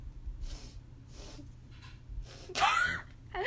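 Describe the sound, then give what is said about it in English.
Several short, breathy inhales build up before one loud sneeze bursts out near the end, its voiced tail trailing off over a low steady background rumble. “It's like sitting on the edge of my nose, I can feel it.”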